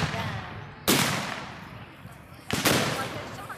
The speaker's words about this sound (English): And once the battle commences, the Federals will push the Confederates. The Confederates will push the Federals, and it will go back and forth, back and forth. All the while, the cannons are firing.